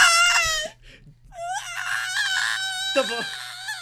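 A man screams in agony as young velociraptors pounce on him in a green forest, amid shrill, piercing shrieks. The sound is loud, coming in a few sustained bursts with a brief pause early on.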